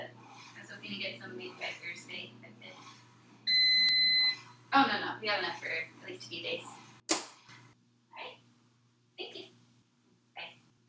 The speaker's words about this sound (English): I don't know if you heard, but when the timer went off, I did turn the stove off.